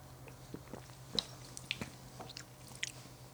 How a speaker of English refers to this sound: Yeah, go take a sip. Let me know what you feel.